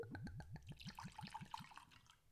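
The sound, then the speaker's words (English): Whiskey glugs out of a bottle as it is poured in front of a microphone at an angle, in a quick, steady run of about eight hollow gulps, clear, trailing into a splashy trickle as the pour finishes. No one speaks. “So as you can see, I pour the whiskey in front of the microphone, so y'all can hear that delicious glug.”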